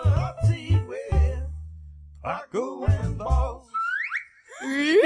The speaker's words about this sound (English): Wait, can we play the jingle again? Yes. Play it again. You're loving it, aren't you? Play it again. One more time. I need to hear the very beginning.